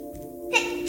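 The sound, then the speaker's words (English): A small child sneezes: a thin, high-pitched voiced sound ending in a quick breathy burst, followed by a second short hiss, brief and fairly soft, with no talking. “Bless you, baby. Bless.”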